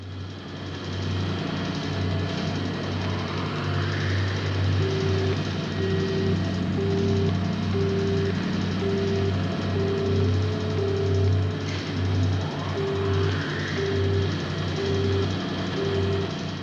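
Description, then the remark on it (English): A steady, low electronic tech hum like the USS Enterprise din drones throughout, joined midway by a run of evenly spaced short beeps, with a few soft rising sweeps drifting over the top. “kind of that like USS Enterprise, like, din just going on, kind of like this low level sound that was constant, that's kind of sounded techish. Just tech noise.”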